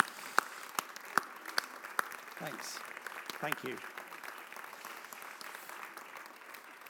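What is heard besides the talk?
audience clapping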